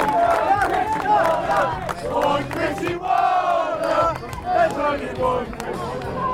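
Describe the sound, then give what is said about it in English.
At a Sheffield United open day, a large crowd roars and cheers for Sir Chris Wilder continuously, a loud swelling mass of shouting voices with rising whoops and calls that surge and fall over several seconds. “There's going to be a big cheer here now for Sir Chris Wilder.”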